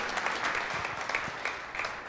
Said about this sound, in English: Let's give them a round of applause and thank them for all they've done. Thank you.